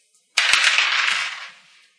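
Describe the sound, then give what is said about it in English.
A quick burst of clattering as two dice are rolled for a stress test in a game, tumbling across a hard tabletop, rattling loudly at first and then fading out over about a second and a half. “The stress test? We'll call it two dice stress test.”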